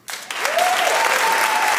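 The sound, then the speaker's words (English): A show audience bursts into applause in answer to whether they own a flat-screen television: a dense, steady wash of many hands clapping that starts abruptly and holds loud for the whole stretch, with a faint whistle-like tone rising through it. “How many clap if you're on a flat screen television?”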